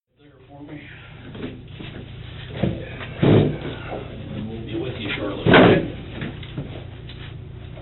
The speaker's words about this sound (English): it makes that god-awful chair-scraping noise.